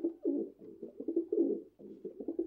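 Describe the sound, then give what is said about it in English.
Pigeons cooing, a steady run of low, throaty, burbling calls that overlap and pulse in short rhythmic phrases with no other sounds. “Miss Pardy regarded the pigeons, and they blinked incuriously back.”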